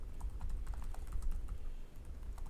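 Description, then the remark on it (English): Rapid, steady clicking of keys on a computer keyboard as someone types a message to send to everybody, a continuous run of soft taps over a low background rumble, with no voices. “And I hear you clicking away over there.”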